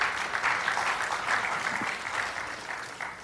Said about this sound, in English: They clap for Marines here. It's okay.